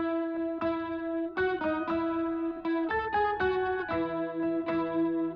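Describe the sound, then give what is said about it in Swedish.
A short electronic jingle introducing the weekly list segment ("Veckans lista"), bright, sustained synth tones stepping through a catchy melody with a steady rhythmic pulse, played alone with a slightly processed, chorused sound. “Den här lilla trudelutten som vi nyss hörde brukar innebära att det är dags för veckans lista.”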